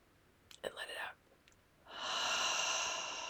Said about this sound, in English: We're going to take a nice easy breath in through the nose and hold. There we go. And go. Hold. Let it out through your mouth. One more just like that. Breathing in. Hold.